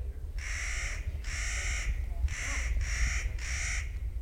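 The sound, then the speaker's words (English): A Clark's nutcracker gives five harsh, grating calls in a fairly steady rhythm, loud, over a constant low rumble like wind. “A bird called the Clark's Nutcracker, for example, specializes in plucking out the white bark pine seeds and burying them all over the place for winter food.”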